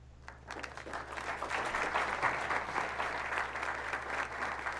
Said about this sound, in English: He claps from the corner.